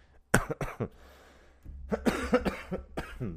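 A loud cannabis coughing fit: a quick cluster of sharp, harsh coughs, a short pause, then a longer ragged run of rough coughs and throat clearing with no speech.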